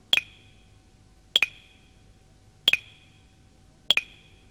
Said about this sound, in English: He picked up stones and dropped them into the pot, one by one.